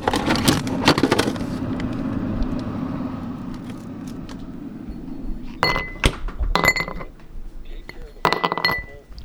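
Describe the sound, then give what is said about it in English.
Ice cubes clink against a glass of Daily Bell scotch: a quick cluster of bright clinks at the start, then scattered taps and rattles later over a steady low background hum. “A sound that is quintessentially my nanny is the clinking of her Daily Bell scotch and ice cubes.”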